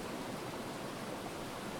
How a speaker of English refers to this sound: I believe it can heal. So the sound of living water can do miracles.